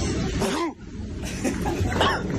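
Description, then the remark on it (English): A small, soft cough right after a sneeze, with a couple of brief breathy vocal bursts around it, against a steady background hum. “Oh, there's kind of an after effect. I gave a little cough”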